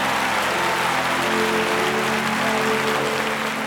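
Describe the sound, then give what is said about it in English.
An audience claps together for the Lord in a dense, steady burst of applause that stays loud throughout, with a faint low hum beneath and no one speaking. “Come on, give him a clap off.”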